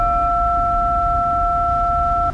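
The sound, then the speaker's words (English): Radio static caused by a solar flare: a rough, continuous wash of hiss and low rumble under a steady two-pitch electronic tone that holds for about two seconds, then cuts off abruptly. “See that static?”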